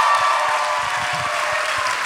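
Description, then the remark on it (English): A crowd claps steadily, a dense, even wash of many hands applauding at a sustained, fairly loud level with no voices standing out. “How many people, round of applause, how many people are familiar with the Dead Authors Podcast?”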